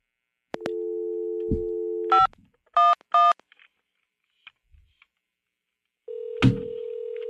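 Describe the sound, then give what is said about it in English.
A steady dial tone hums, then three short touch-tone beeps are punched in quickly to dial 511, the New York City Metro Region information line, followed by clicks and silence before another steady tone starts. No one speaks. “So let's call 511.”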